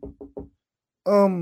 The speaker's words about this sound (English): They knock on the door.